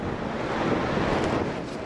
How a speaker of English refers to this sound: Olivier Grunewald is tasked with setting up a camera linked to a barometer amid gusts of wind.